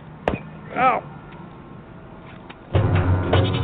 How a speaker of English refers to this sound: Oh my God, there's a little goat eating the wire.